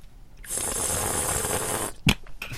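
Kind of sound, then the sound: food or drink, slurping wine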